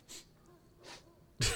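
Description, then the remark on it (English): Two quick, airy sniffs spaced apart, followed by a louder, sharper nasal snort-like sniff, with no talking. “The sniffing is integral.”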